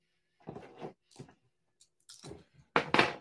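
Four dice, rolled for an awareness check, rattle and tumble across a hard surface in a few irregular clattering bursts, ending with a louder final clatter as they settle on a 6, a 5 and two threes. No one speaks.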